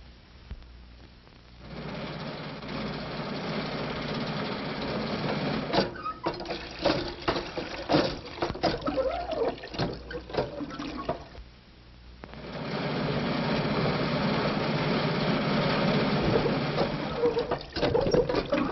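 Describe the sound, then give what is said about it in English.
The engine of a crippled car rumbles steadily and then pulls away. Its broad, rushing drone drops back briefly in the middle, with rattling clatter, before surging up loud again toward the end. “has undone her bonds and is starting for help in the crippled car.”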